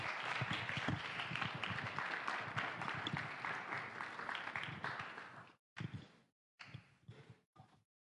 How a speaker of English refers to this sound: Well, thank you guys. Can we give a round of applause for this team as they went?